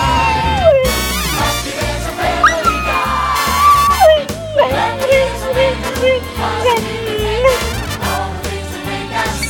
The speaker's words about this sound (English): This episode is brought to you by my dog Gordy's theme song sing-along.